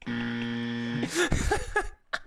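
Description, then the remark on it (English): A harsh, flat electronic buzzer blares steadily for about a second, a low droning tone with stacked harmonics, then cuts off as voices start talking. “Wait, you get buzzed for conspiracy theories?”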